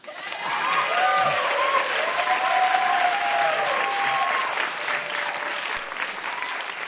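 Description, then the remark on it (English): A crowd claps loudly and steadily for several seconds as an audience votes by applause for a songwriting entry, a dense wash of applause with a few faint whoops or voices riding on top before it tapers slightly. “So I think what we'll do here is I will say the name of the person, and then the audience will applaud loudly if you like it, not at all if you don't like it.”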